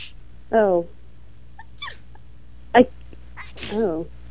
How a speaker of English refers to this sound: I wish I could say those were real sneezes. No. Those were pre-prepared, pre-recorded sneezes.